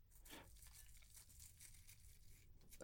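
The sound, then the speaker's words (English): Sea salt being sprinkled, a soft continuous crackly hiss of tiny grains pattering down for a few seconds, with faint low rumble underneath and no talking. “Can we hear the sea salt, the happy sound of sea salt being sprinkled?”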